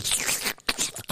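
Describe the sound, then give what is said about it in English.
A voice imitates wet slurping and sucking noises, a run of hissy, smacking bursts broken by a brief pause, then another quick slurp. “Bitch, you get it hard, bitch, so you get to slurping and you get to sucking. How you be making sounds?”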